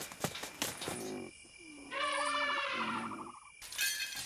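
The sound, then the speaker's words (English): Glass shatters loudly in a crashing burst of breaking panes as something crashes through a glass greenhouse, followed by a warbling, whistle-like tone, then another brief spray of shattering glass at the end. No one speaks. “Trust that mad old cow to aim at a glass house.”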